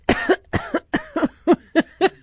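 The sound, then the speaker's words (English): A fairly loud fit of coughing: about seven short, harsh coughs in quick succession with brief gaps, and no talking. “That was supposed to be a surreptitious cough, but I'm even laughing at myself for that.”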